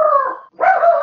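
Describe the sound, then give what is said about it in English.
A dog in an office lets out two loud howling yelps in quick succession, each drawn-out and tonal, separated by a brief pause, with no talking. “And then there was, sorry, my dog in my office.”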